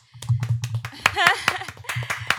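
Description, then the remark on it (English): A short burst of hand clapping celebrating someone getting agency representation: a dozen or so sharp, bright claps in a quick, slightly uneven rhythm, with a brief voiced cheer rising in the middle. “Clap that up.”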